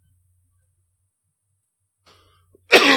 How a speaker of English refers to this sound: Man, I've been coughing the whole time over here too. Yeah, sorry. I tried to hit mute, man. I couldn't get to it fast enough.